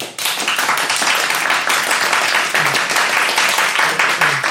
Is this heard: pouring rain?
no